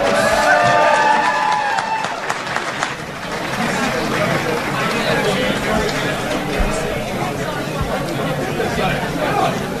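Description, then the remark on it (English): A crowd applauds and cheers steadily for Tommy Land for about ten seconds, a dense wash of clapping mixed with shouts and babbling voices, with a few louder whoops near the start. “Give Tommy Land another round of applause.”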